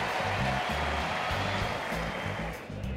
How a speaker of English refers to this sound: Fan favorite for 11 seasons. A big round of applause for Brandon Phillips. Now a tip of the cap by Phillips and an even bigger round of applause.